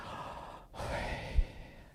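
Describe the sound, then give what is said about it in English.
Slow, audible breathing: a long airy exhale, a brief pause, then a drawn-in breath with a soft catch near the end, unaccompanied by any talking. “No, that's just breathing.”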